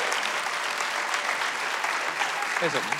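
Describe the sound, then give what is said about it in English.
An audience claps steadily as a woman comes up to the microphone, a dense, continuous wash of applause, with a voice briefly audible near the end. “Give her a hand clap as she comes.”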